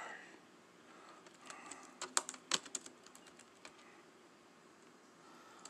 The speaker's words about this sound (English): There we go. Oops. I'm typing it to him.